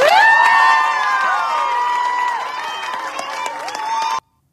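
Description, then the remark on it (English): A loud crowd cheers and whoops after an oath of office is sworn for a school superintendent in Pennsylvania, many voices overlapping in a sustained roar with scattered claps, going on for about four seconds before cutting off abruptly. “Yeah, they are cheering on this because these books depict disgusting acts and they cheer this on.”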